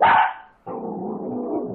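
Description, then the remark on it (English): A dog gives one loud, sharp bark, then after a brief pause a rough, steady rumbling noise continues to the end. “Doggy!”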